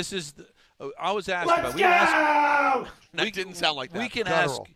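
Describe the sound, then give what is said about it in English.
A man's voice yells excitedly in loud, drawn-out bursts, with one long sustained shout in the middle, strained, without clear words, in a video posted by his wife. “I did see his wife, Stacy, did post video of him screaming like Dave Rothenberg.”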